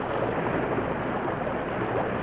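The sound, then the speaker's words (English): A keg of blasting powder exploding at the Crazy River, heard as a loud, sustained roaring rumble that stays steady throughout without any voices. “The Lone Ranger and Tonto urged their great horses forward just as a keg of blasting powder exploded.”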